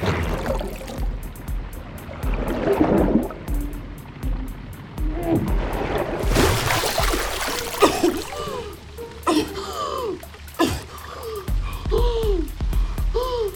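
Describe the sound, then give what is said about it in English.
Muffled underwater churning with swirling water and repeated bubbling gurgles; rising bubble pops grow more frequent toward the end, fairly loud, with no voices. “You need to get out of the water. Melissa! You need air. Swim back to the top. Follow the bubbles up.”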